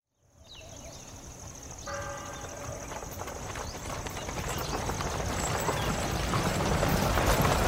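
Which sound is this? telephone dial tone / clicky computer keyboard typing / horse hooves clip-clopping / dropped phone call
horse hooves clip-clopping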